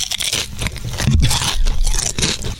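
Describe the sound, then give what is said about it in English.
Loud crunching of salt and vinegar potato chips, a steady run of crisp, crackly chews over a few seconds with no voices. “put me on to a salt and vinegar potato chip with Frank's Red Hot soaked”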